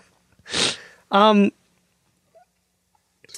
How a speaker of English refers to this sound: Yeah, blow your nose. And then tell everybody about it. Yeah. It's he's doing it now. He's turned his head so we don't have to hear it, but okay, it's a clean wipe. I'm sick, folks.